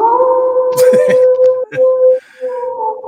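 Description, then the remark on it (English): A dog howls in a long, steady, fairly loud tone, broken partway through by a few rough, coughing bursts before the drawn-out howl resumes. “didn't know wolves can cough.”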